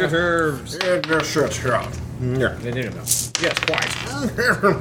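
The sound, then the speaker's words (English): Dice clatter and tumble across a hard tabletop in a few quick bursts of rattling clicks as players make initiative rolls in a tabletop game, mixed with several people talking over one another. “And I need initiative rolls.”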